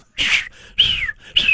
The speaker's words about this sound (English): I'm sorry, I can't be heard over the birds.